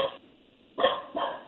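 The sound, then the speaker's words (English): A person imitates a dog barking, giving two short, fairly loud woofs spaced with a brief pause between them. “That's me pretending to be a dog.”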